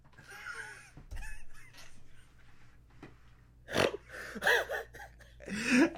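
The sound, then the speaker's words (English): A person loudly imitates a rooster crowing, belting out a series of strained, squawky vocal cries, with brief pauses between bursts and the final calls the loudest. “Cock-a-doodle-doo! A cock-a-doodle-doo!”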